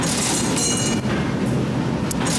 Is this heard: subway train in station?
yes